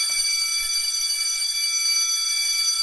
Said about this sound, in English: Well, I hear the bell, which is always our sign that it's time to wrap up and get on out of here.